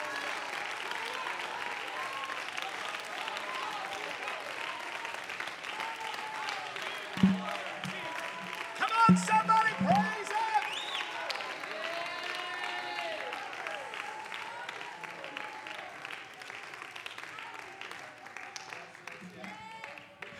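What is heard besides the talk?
audience clapping loudly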